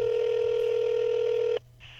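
A single steady telephone dialing tone holds one mid pitch for about a second and a half, then cuts off abruptly, leaving a faint low hum underneath.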